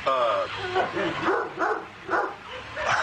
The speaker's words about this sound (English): Sure, the dog won't get out and attack us here? This is... dog, an angry dog.